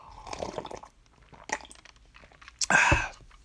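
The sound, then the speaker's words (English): Quiet mouth and liquid sounds as someone takes a sip of a drink: a slurp and a swallow, ending in a louder gulp near the end. No one speaks. “Okay, I'm going to take a sip right now.”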